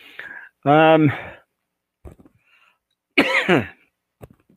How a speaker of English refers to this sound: It's pretty dry up here, and that's where the cough is coming from. I'm pretty sure that's it.